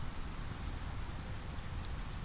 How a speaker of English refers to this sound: From my cozy haven, I can see clearly from the window as raindrops hit the lake at the foot of the falls, sending droplets dancing across its usually mirror-like surface.